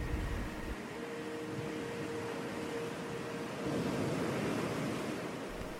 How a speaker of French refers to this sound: Il vous reste alors encore quelques minutes pour profiter du bruit des vagues et des couleurs flamboyantes qu'offre la nature.